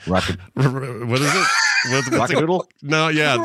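A person imitates a rooster crowing, a loud, strained, honking cry with several rising and falling segments over about three seconds, with no other sounds.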